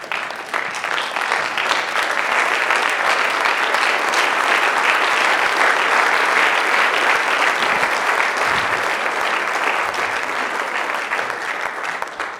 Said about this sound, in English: Everybody stand up and give him a good hand clap of praise. Would you do that today?